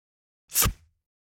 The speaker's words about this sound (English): Flip clock.